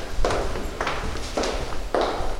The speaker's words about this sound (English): The whole week was eerie at the State House. Hundreds of lawmakers, staff, and lobbyists were there, but the building was closed to the general public. The usually noisy place was quiet enough to hear a single set of footsteps ring out.